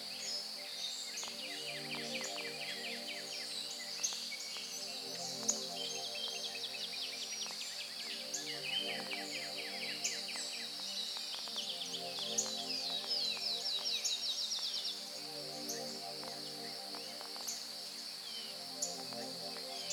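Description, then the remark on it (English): Busy birdsong fills a forest in still air, with many high chirps and trills overlapping continuously, a steady insect-like buzz underneath and a low hum in the background, no voices. “The air is still, and the forest is alive with the sound of birds.”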